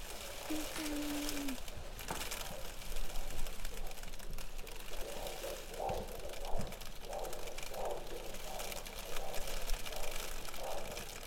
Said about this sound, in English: Do you hear the hail on my window?